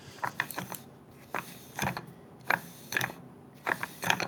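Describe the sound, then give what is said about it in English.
Tungsten dice spinning and rattling inside a wooden case: a series of sharp, clattering click bursts in an uneven rhythm, about eight clusters in a few seconds, with no voices. “that was me spinning my tungsten dice in their wooden case”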